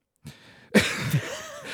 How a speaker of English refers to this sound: Sorry, I just coughed really loudly.